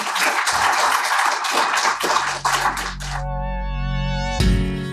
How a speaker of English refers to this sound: Before we go, can we give a big round of applause to our panel, please?